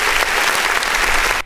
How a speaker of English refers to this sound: Let's give Kadarius Savage an applause.